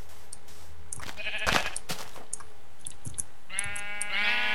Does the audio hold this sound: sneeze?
no